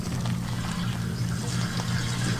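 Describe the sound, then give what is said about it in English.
Wet, squelchy stirring of a thick, watery Cheetos mac mix just microwaved for 3.5 minutes, a continuous soft sloshing and scraping over a steady low hum, with no one talking. “Cheetos mix. All right, stir it up.”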